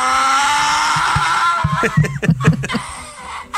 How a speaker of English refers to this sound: What's wrong with that donkey? He's a hee-haw. He's a donkey. That's what they sound like.